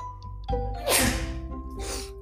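A sharp, noisy sneeze bursts out, followed about a second later by a second, softer breathy sneeze, with no talking in between.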